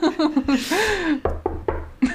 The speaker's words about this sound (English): That's me knocking on wood.